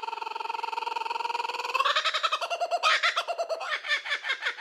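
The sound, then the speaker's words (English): A kookaburra calls alone, starting with a fast, steady chuckle that swells into loud, raucous cackling bursts, clear throughout. “Slap the bird, and let's get you giggling just like this kookaburra.”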